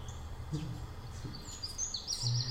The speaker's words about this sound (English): No, it's fine. It's just beautiful birds. It's just birds.